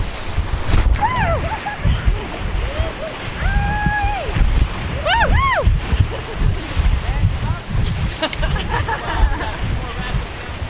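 Rushing, churning water roars steadily as a raft runs through the Fern Gully rapid of a river, probably class 2 plus at the current water level, with wind buffeting the microphone and people whooping and shouting excitedly over the noise.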